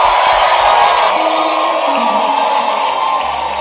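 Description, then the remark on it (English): A church audience gives the Lord its loudest clap and shout: loud, sustained clapping and shouting, a dense wash of cheers, whoops and yells that holds steady from start to finish. “You want to give the Lord your loudest clap? and your loudest shout you've ever given.”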